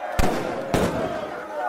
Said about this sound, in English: It was the sound of shooting and shouting, and horses and men running wild. A gang of cowboys, from Montana mostly, thundered up the road, yelling at anyone nearby, warning, in between pistol shots, that they were bad men.